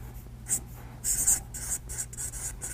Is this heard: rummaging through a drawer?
no